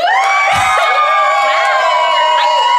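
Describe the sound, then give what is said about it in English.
A live crowd screams and cheers at full volume to vote by applause in a contest, many high voices overlapping into a continuous roar that lasts the whole few seconds, with occasional shrieks rising above the din. “I want you to scream as loud as you can whenever I say one of them, and we'll decide by applause what is the winner of this ship name duel.”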